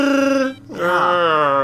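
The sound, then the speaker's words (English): Two loud, drawn-out Wookiee yells from the Star Wars Holiday Special: a steady, harmonic bellowing howl, a brief break, then a rising, warbling roar that holds to the end. “20 minutes of Wookiees just yelling at each other.”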